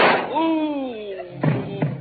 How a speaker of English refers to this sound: you shot him.